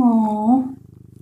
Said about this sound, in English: You probably can't hear her purring, but my cat's name is Ludacris. We call her Luda for short.